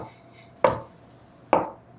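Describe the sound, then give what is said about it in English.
Two firm knocks on a room door a few doors down a hallway, spaced almost a second apart, each a sharp solid thud with a short decay, heard on their own with no voices. “I'll knock firmly.”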